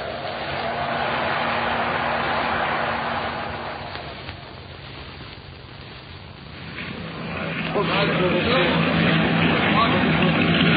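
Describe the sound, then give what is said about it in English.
A small motor launch engine drones steadily over rough, churning, splashing water during a crossing in strengthening wind, the wash dipping briefly midway before surging louder again, continuous throughout. “That's a mighty small launch for so much angry water, Sergeant.”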